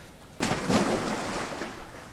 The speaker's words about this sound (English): I thought I heard lightning. And yeah, I hear a lot of rain and lightning. Yeah, I thought that was lightning. I'm just assuming that's at your place